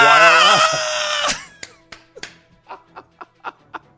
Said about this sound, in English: He may just need to start screaming like that after touchdowns just to switch the gimmick up a little bit.